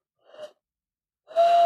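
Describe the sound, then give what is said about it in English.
A voice imitates a comically falling owl: a short, soft breathy hoot, a brief pause, then a louder wheezy whistle held at one steady pitch until the end. “Wow, was that an owl falling through a hoop? Comically falling owl.”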